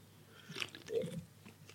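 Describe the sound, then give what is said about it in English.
A short sip of a golden pale ale followed by a soft swallow and small wet mouth sounds, quiet and isolated with no talking. “A quick sip as well, see what the fuss is about.”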